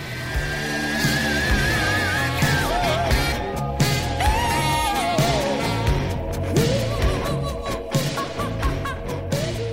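Dense, loud Gulf Coast bluesy heavy rock with distorted guitar and a frenzied, wailing vocal that bends and slides in pitch, playing at steady volume throughout.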